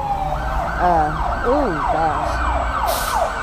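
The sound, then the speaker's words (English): An ambulance siren wails loudly and continuously, its pitch sweeping up and down in rapid repeated cycles over a low rumble of road traffic. “Ambulance.”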